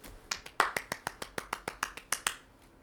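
One person claps about fourteen times in a steady, brisk rhythm, each clap a crisp, sharp smack, with no voices. The claps fade out over roughly two and a half seconds.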